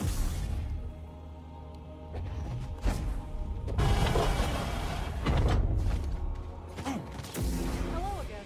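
A heavy door of Pilgrim Sanctuary, an ancient temple, slowly creaks open, a long grinding groan with mechanical rumbling and shifting pitched squeals, loud, lasting several seconds with no voices.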